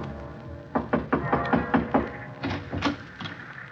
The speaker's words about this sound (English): I knocked on the door for a good minute before it finally opened.